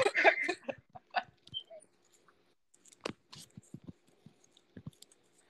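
A dog barks in a short burst at the start, followed by scattered clicks and soft knocking sounds in an otherwise quiet room with a faint steady hum.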